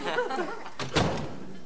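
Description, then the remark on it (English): A faint voice fades out, then a door knob clicks and turns, turned by someone using his feet, followed by a couple of quick thumps as the door bumps open, fairly soft overall. “He figured out how to turn the knob with his feet.”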